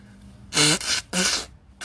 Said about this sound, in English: Besides me blowing my nose, I'm sorry.